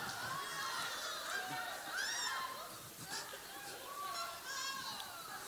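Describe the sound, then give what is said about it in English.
A live comedy show audience in Portland talks and shouts at the stage: many voices overlap in a steady, busy murmur, with scattered higher-pitched calls and shouts rising above the crowd throughout. “This audience is chatty.”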